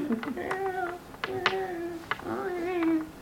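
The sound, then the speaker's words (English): Three drawn-out, wavering cat-like meows, made by moss on a wall shrieking, come one after another, each rising and falling in pitch, with sharp clicks or taps scattered between them at a moderate level. “Yeah, they sound like cats.”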